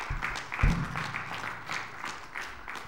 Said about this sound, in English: I'd like for all those who helped us out yesterday and Friday in the putting the blessing boxes together, if you'd get a round of applause for them, please.